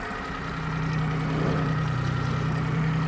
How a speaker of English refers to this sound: Umi Hoshijima picks me up in the University of California Santa Cruz's bright orange inflatable boat. The researchers load it up with scuba gear. And we pull out into Sitka Sound.